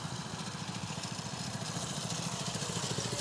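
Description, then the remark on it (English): A small mini bike engine runs steadily with a rapid, buzzing low-pitched putter, its rhythmic firing pulses holding even and fairly loud throughout, with no voices. “Look, there's a mini bike. Oh, so they got running.”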